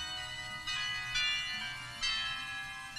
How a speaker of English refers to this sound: He pulls the sheet away. You hear those chimes, like those bells.